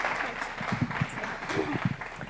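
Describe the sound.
An audience gives a steady round of applause for the speaker leading the morning service, a dense, continuous patter of many hands clapping at once, with a few voices murmuring underneath.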